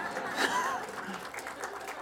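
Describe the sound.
An audience claps steadily for a member who visited the tabernacle in Timna Park, a dense, continuous patter of many hands, with a brief rising whistle-like tone early on and some murmuring voices mixed in.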